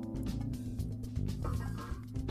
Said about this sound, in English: You just hear a massive fart.